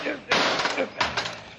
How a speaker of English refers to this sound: Now, wait till I smash this old rusty padlock.